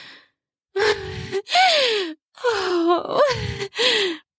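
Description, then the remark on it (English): A loud series of sharp gasping breaths blending into voiced moans, about five bursts, each sliding down in pitch, with brief pauses between and no talking. “The intensity of your breathing sharpens. You moan.”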